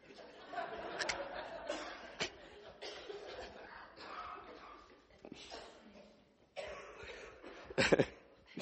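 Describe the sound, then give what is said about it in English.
A handful of sharp coughs break out irregularly, with a louder cluster near the end, amid murmured talking and what sounds like stifled laughter. “Sorry if I made you cough.”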